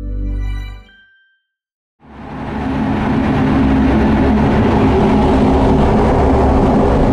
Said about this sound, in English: We're up in the clouds. The roar of our engines, the wind rushing by, is deafening.